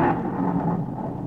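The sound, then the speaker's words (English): A low, rolling rumble of thunder holds steady for a moment, dense and fairly loud, with no voices over it. “Doggone, it's thundering, too.”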